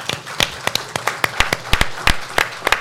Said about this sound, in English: Liz, thank you, and your team, amazing team. Can we have a round of applause for Liz and her team?